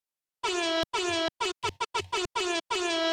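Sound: air horn sound effect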